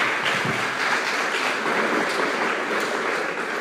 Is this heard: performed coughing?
no